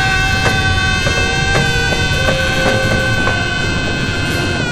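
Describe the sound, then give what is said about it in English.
A spaceship rocket taking off after a countdown: a loud, steady droning roar layered with sustained humming tones, broken by a few faint clicks, with no voices. “Oh no, it's taking off.”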